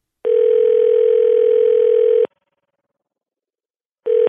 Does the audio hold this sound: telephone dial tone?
yes